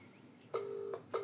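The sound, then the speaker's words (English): A UK phone ringtone comes down the line as a call is placed: a steady electronic tone, broken by short gaps into repeated bursts, fairly clear over faint background hiss, with no talking. “Just trying to ring them up again, give them another crack. That's a UK ringtone.”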